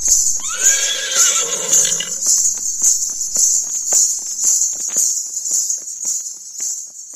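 A horse named Apollo lets out one loud whinny that quavers and falls away over about two seconds, backed by a steady, shrill chorus of crickets that continues alone afterward.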